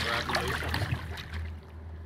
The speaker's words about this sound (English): pulling the boat in.